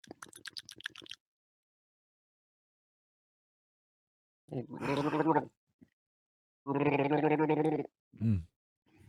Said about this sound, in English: How was the gargle? Ooh. Pretty good gargle.